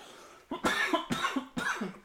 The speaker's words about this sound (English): One second, I'm going to cough.